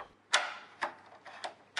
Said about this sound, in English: Please, please, unlock the door for Mr. Randolph.